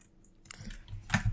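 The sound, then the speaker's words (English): Dice clatter across a hard tabletop in a short burst of light clicks, finishing with two sharper, louder knocks. No one speaks. “This dice is so close to getting replaced.”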